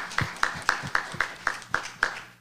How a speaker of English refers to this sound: Give another hand clap of praise for the virtues of Ma'at.